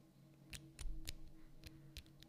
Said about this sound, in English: I'm about to put the clasp on, and I thought you guys would love to hear it.